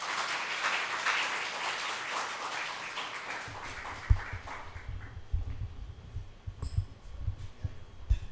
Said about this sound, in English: So with that, I'm going to have him come, if we can maybe give him a round of applause.